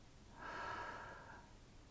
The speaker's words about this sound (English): Breathing in through your nose. Exhale out your mouth.